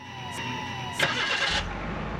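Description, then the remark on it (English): A car engine cranks with a whining starter for about a second, catches with a loud burst, then settles into a low, steady idle rumble as the driver gets in to drive away. “And I got in my car and I drove away and I drove home.”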